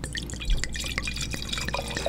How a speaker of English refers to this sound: Yeah, see, that's what I like. That's the sound I like. That was a really timid pour. Yeah, that was... It's almost like someone was looking over your shoulder.